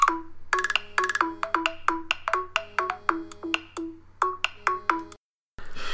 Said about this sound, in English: Is that your phone? Yeah, it is. Who's ringing you? I don't know. I actually don't recognise the number.